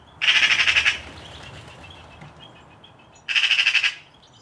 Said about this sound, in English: Magpies have quite harsh calls and can be raucous when threats like cats are near.